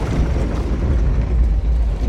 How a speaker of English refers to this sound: Slowly, the water level drops, and they can hear the sound of grating stone and sloshing water.